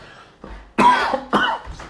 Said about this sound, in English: Would not be an episode without me coughing.